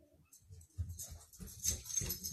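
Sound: puppy whimpering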